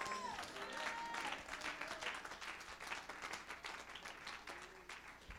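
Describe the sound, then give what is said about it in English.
An audience claps hands together in a dense, sustained burst of applause lasting several seconds, with a few voices calling out faintly over the steady rattle of clapping. “I wonder if somebody can clap your hands today.”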